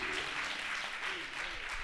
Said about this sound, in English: Come on, give God a good hand clap.